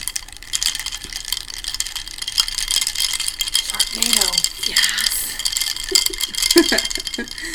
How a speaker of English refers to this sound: Let's do a little ice clink.